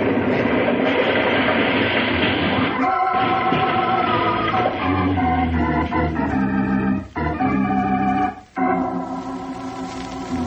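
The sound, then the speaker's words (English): A heavy train thunders loudly across a trestle with steady rumbling and clatter, then sudden crashing bursts and breaks cut through the din near the end as a detonator wrecks it. No one speaks. “Three hours later, the two men, Joe Malone and Tom Henderson, were driving eastward through the night, far from the scene of the train wreck.”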